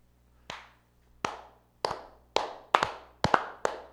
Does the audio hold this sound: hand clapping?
yes